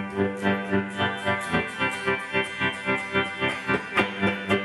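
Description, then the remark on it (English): A sustained electric guitar chord pulses steadily through a tremolo effect, its volume throbbing in a fast, even rhythm. Full and fairly loud, with a slightly gritty edge and no voices. “I bought a tremolo pedal, because you can, this pedal has a nice sort of switcher.”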